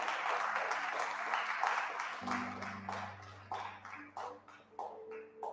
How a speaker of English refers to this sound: Come on, give God a hand clap if you can.